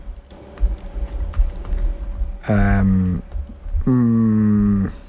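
Quick, clattering keystrokes patter on a computer keyboard as someone rapidly types into Google for a couple of seconds, then give way to two long, loud, low droning calls, like mooing, one after the other.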